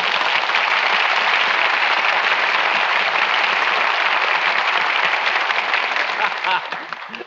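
A studio audience applauds in a dense, steady wash of clapping that holds at full loudness for about six seconds, then begins to thin out and taper off.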